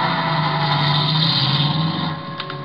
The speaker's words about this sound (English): But when I peeked over the top of the stairs, he was in his car and going.